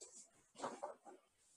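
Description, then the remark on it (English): A dog plays with a squeaky toy: a few soft, muffled squeaks and rustles, then one sudden, sharp, high-pitched squeak at the very end. “Probably my dog's decided to play with a squeaky toy right at the second.”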